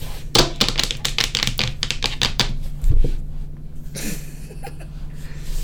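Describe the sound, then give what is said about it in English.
Rapid clacking of computer keyboard keys in a quick irregular burst, then a pause and a few scattered taps over a faint low hum. “Stop sounding like you're typing on the computer.”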